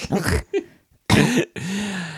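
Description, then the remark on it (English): A few harsh, loud coughs and a rough throat clearing burst out, separated by brief pauses, ending in a strained, drawn-out vocal rasp. “God, I just want to a spit and cough throughout this whole thing.”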